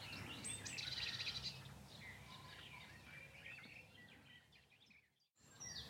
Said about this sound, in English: Well, the nightingales are being outsung by the garden warblers at the moment.